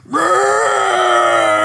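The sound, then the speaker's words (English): A voice imitates a long, drawn-out groaning yawn, rising in pitch at the start and then holding steady and loud, with no other talking. “He's like, that's how he yawns, and you know, he gets up.”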